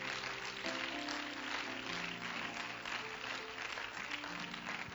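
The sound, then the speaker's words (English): An audience at a Bible lesson claps hands in praise to the Lord, a dense, steady wash of applause lasting throughout, with sustained organ or keyboard tones humming underneath. “Would you clap your hands in praise to the Lord again?”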